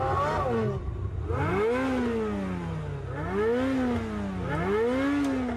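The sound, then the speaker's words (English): A Ferrari sports car engine revs hard and accelerates, its pitch climbing and dropping in repeated surges as it runs up through the gears, loud, with no voices. “Nice car. What's the retail on one of those? More than you can afford, pal. Ferrari.”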